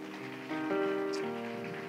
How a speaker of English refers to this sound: Can we give our pastor a round of applause? Amen.